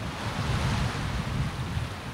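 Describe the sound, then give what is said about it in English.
Lake waves wash steadily against a pier while gusty wind rumbles across the microphone, a continuous, fairly loud low roar of water and air with no voices. “I mean, I know it's a lake, but it feels like I'm back home along the ocean.”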